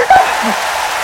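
A dense, steady wash of audience applause for an audience member who performed a stupid human trick, many hands clapping together into an even crackling roar that holds at a fairly loud level throughout the brief moment.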